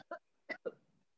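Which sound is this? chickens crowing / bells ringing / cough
cough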